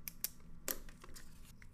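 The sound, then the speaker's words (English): Two small slips of paper, one marked A and one marked D, being handled and mixed up: a few quiet, crisp rustles and light taps in irregular short bursts, with no one talking. “I'm going to put two pieces of paper. One piece of paper is A. I write A.”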